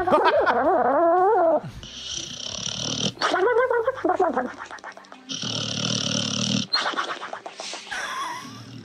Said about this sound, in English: Dog snoring. Here.